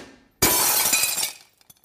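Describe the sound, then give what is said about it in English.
A sudden loud crash of truck window glass shattering, a bright crackling burst lasting under a second, followed by a few faint tinkles of falling shards. No voices. “Elon Musk visions were like coming through, like when he tried to break the truck.”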